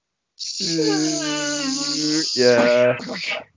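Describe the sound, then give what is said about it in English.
A person imitates a house fly with a loud, sustained buzz lasting about two seconds, then a brief break and a shorter, rougher burst of buzzing. “Blowing against the window, you can hear it buzzing against the window and the glass.”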